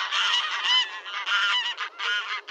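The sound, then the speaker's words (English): A barnyard goose honks repeatedly in loud, raspy bursts, the calls running together with brief gaps between them. No one speaks. “Is any bird more ordinary, more unlikely to draw praise, than a barnyard goose honking and waddling about the farm?”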